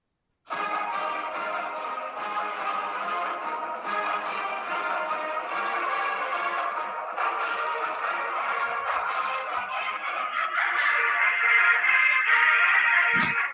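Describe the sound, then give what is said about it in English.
The brassy Oregon State college fight song plays through a small phone speaker, sounding thin and tinny with no bass, running steadily and fairly loud for over ten seconds with no one talking. “But first, as always, the Oregon State fight song.”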